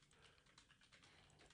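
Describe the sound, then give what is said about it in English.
Rapid, continuous typing on a typewriter with dense clicking keystrokes packed closely together, fairly loud with no voices. “Boy, you are typing like a madman.”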